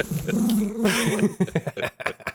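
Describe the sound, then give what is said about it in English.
A dog named Herbie makes noise, a drawn-out growling whine followed by a quick run of short, snuffling yips and scuffles, fairly loud. “don't ever bring your fucking dog to my house”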